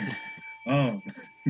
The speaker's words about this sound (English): And once I switch it over and I ring the bell, you may start now. That fucking bell's messing with you, bro.